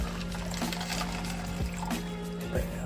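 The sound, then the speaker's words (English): Water pours steadily into a plastic drink mixer holding Dubby Gearless Energy Dragonade powder, a continuous gush with a rising tone as the container fills, plus a few small clunks along the way. “Dump in the water.”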